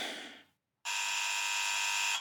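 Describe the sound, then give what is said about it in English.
A buzzing doorbell rings twice on a Saturday: a brief harsh buzz, a short silence, then a longer, steady, loud buzz that holds for over a second before cutting off. “Gonna have words with whatever asshole goes around ringing doorbells on a Saturday.”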